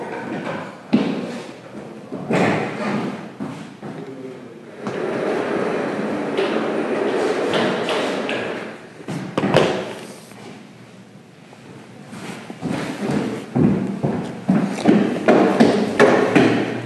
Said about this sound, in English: Hey, and then I'm going to really quick just shut the door.